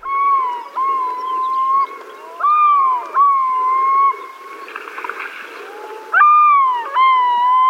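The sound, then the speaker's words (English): A yellow-billed loon calls on Alaska's North Slope in a series of long, mournful wails, each rising and breaking in pitch, loud, with no voices and only a faint background hush between phrases. Recorded on assignment for the Cornell Lab of Ornithology. “We're hearing a yellow-billed loon calling on Alaska's North Slope.”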